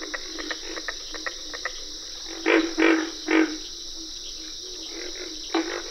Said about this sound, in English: You can distinguish the treble notes of cricket frogs and the distinctive katuk-katuk calls of carpenter frogs.